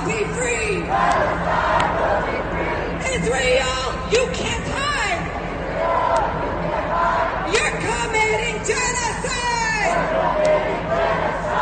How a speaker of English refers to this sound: And one thing was common at all three of these rallies. You would hear this chant. From the river to the sea.